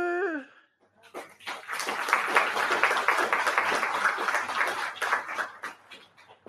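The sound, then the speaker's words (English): A short voiced sound gives way to a slow clap that swells into dense, steady applause, a continuous crackle of many hands sustained for several seconds without any talking. “Got the slow clap.”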